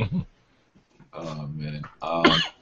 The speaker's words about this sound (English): Let me clear my throat.